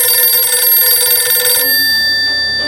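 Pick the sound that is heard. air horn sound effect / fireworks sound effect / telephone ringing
telephone ringing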